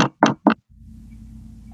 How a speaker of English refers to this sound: I knock on the front door.